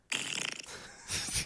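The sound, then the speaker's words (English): A buzzy, sputtering raspberry blown with the lips into a microphone, mimicking a fart, from a sound-effects album of fart noises: one rattling burst of about half a second, a brief pause, then a shorter, breathier second blast. “They're not even farts. They're like mouth farts.”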